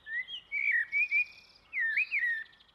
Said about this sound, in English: Birdsong, the blackbird, is quite distinctive, and if you want to get into birding, it's probably one of the easiest birds to get to know.